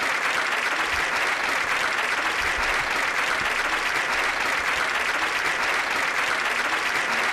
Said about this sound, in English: A round of applause for our sister, brothers and sisters.